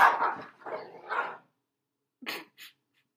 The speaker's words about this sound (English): Our dogs just got into a fight, but they have they regulated. Settled. They regulated themselves.